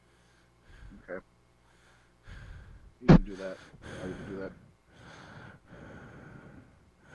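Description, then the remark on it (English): A sharp, heavy breath blasts right into the microphone partway through, loud, with quieter breathy sounds around it while people talk back and forth. “No, I'm just breathing heavily into the microphone.”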